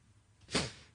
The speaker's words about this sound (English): Close that door behind you, would you?